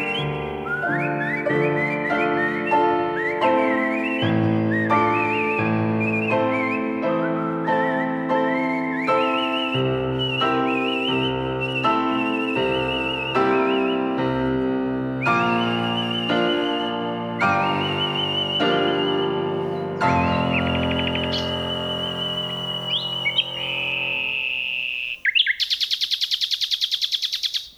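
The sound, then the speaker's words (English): Two nightingales sing together in a forest near Kent, England, pouring out rich whistled phrases and rapid repeated notes in a steady, continuous stream, fairly loud, ending in a burst of bright trills. “Phil Riddett recorded these two nightingales in a forest near Kent, England.”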